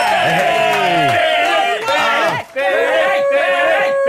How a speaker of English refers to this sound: Big round of applause, Benny Hanna.